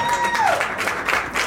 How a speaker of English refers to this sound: Let's bring up another comic. Keep it clapping.